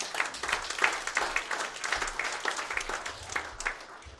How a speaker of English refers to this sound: Come on, clap your hands if you're hearing me.